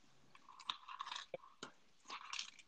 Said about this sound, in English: somewhere eating a Crunch Bar, bro.